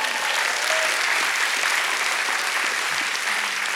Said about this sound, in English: I think we should clap on that one.